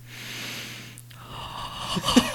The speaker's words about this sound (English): Did you get that sound there? The big whiff. The big whiff. It sounds like heavy breathing.